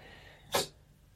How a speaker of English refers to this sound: Thanks for sneezing and being part of the process.